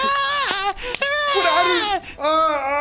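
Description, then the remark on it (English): A person mimics a wailing infant, a loud, strained cry with wavering pitch rising and falling over a few sustained breaths, alone with no other sounds. “in your hands instead of the gunpowder barrel is an infant. And you look down and it's going.”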